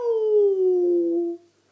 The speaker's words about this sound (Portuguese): Tabby deslizou pelo telhado e entrou a toda a velocidade na cozinha com um forte miau.